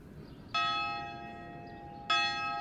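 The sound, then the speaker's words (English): A big old bell in the courtyard of San Quentin prison rings out twice to start count time, each strike sharp and loud with rich ringing overtones that hang and slowly fade, about a second and a half apart, heard on its own with no talking. “At San Quentin, count time starts with the ringing of a big old giant bell.”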